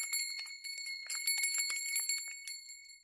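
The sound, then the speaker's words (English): Bells tied around cows' necks clink and jangle in a steady, rhythmic pattern as the cows shake their heads, bright metallic tones ringing on and overlapping, moderately loud, with no voices. “In response, the cows would shake their heads, and the sound of bells tied to their necks would give out a rhythmic sound.”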